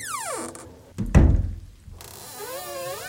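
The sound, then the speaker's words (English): A door, its hinges treated with WD-40, swings open smoothly with no creak, marked by a single dull thunk partway through, with faint tonal sounds before and after. “Got some WD-40 for that door.”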